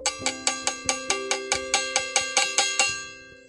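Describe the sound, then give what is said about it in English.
A metallic bell is struck about a dozen times in a quick, steady rhythm, its bright ringing tones overlapping, then trailing off as the final strike fades. No voices are heard. “All right, so sound the bell.”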